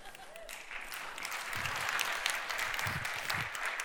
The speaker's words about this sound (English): The first group clap for that, you guys.